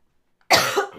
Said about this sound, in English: But I still have this stupid cough that is just hanging on to me and not wanting to let go. It's like, be gone, bitch. I don't want this cough anymore. I am sick of you. You need to go away.